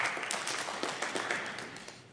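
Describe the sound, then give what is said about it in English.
An audience claps together in a steady, dense patter of many hands, moderately loud and evenly sustained for a couple of seconds, fading slightly toward the end with no one speaking. “That was a clap that says, it's good, but don't take all night.”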